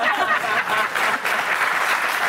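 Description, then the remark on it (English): A crowd applauds steadily in answer to a question put to the audience, a dense wash of many hands clapping at a sustained, fairly loud level for a couple of seconds with no voices standing out. “Can you, by applause, do you agree that I'm a man?”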